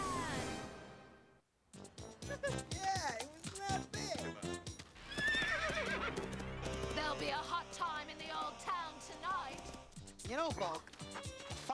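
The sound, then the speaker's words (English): A horse whinnies loudly several times over a rapid, steady clip-clop of hooves, the sounds busy, with voices mixed in among them. “He rides a horse?”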